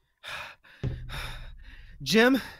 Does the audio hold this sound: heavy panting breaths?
yes